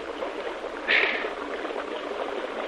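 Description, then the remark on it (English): Steady rushing river water fills the scene, broken by one brighter splash about a second in, like someone wading through the current, as a party of men wades through a river holding their rifles out of the water. No voices are heard. “no talking when we get down into the river”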